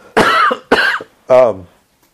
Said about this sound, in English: I'm making myself cough here.